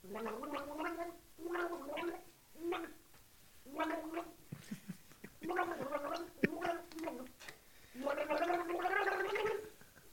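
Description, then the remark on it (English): Someone gargles water while humming a song for others to guess, the bubbly tone rising and falling across a series of short sung phrases, ending in a longer, louder gargled passage. “Let's gargle song number one.”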